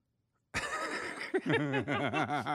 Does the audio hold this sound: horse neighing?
yes